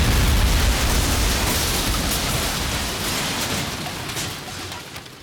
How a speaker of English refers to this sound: Explosion.